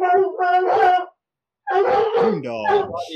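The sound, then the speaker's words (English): Coonhounds bay and howl in long, drawn-out, loud cries: two bursts, a brief silence, then several overlapping voices rising and falling in pitch. “Coon dogs.”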